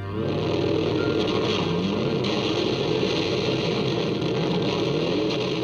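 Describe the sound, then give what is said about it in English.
A distorted electric guitar played through an overblown amplifier mimics a revving motorcycle for an album's title track, a loud, gritty engine-like roar that holds steady for several seconds with no voices. “captured the sound of a revving motorcycle for the album's title track.”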